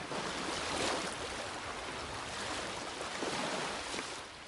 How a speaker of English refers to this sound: You know, as you sit there and hear those waves, how many of you does it take to a special place?